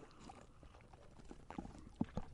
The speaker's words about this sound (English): You hear all the drinking sounds. I know.